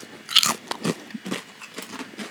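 A sharp, loud bite into a salt and pepper kettle chip, followed by a run of crisp, crackly crunches as it's chewed, with no talking over it.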